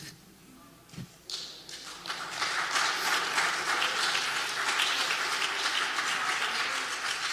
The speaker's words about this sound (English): We clap for him. We clap for him.